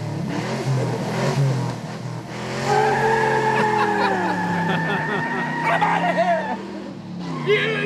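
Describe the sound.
A car roars off with tires squealing loudly, long sliding pitched screeches over a revving engine that fades slightly as it pulls away, with some voices in the background; the car has just been jump-started by a police officer.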